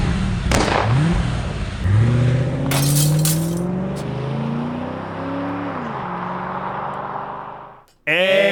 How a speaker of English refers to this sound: That car just kept driving off. I could see it. It was like miles Australia away.